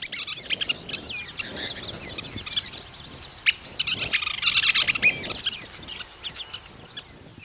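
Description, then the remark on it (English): A Western Kingbird, a flycatcher, giving its chattering call: rapid, high squeaky chirps and sputtering twitters, bursting in dense clusters around the middle, over a soft rustling background, with no voices. “And I think the best one is Western Kingbird, and it kind of sounds like if you're fast-forwarding a cassette tape.”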